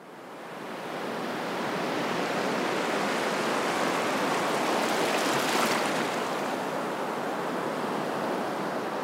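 Mediterranean Sea waves lapping and washing at Tel Aviv on a warm autumn afternoon, a steady hiss of water that swells toward the middle and slowly eases, with no voices.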